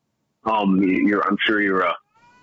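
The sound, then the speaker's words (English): A cat meows twice in quick succession, loud, each call drawn out with a wavering, rising-and-falling pitch, followed by a faint tone trailing off. “There's a cat.”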